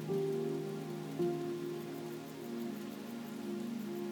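Steady, even rain hisses throughout, with soft sustained piano tones held low underneath and a gentle note change just past a second in. No one speaks.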